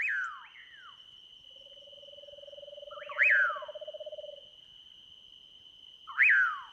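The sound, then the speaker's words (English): Two eastern screech owls give steady, even trills lasting a few seconds from the sides of a road in a forested park by the Rio Grande near Mission, Texas, at dusk, with sharp chirping bird calls repeating and a constant high-pitched insect-like whine in the background. “two eastern screech owls trill from the sides of the road.”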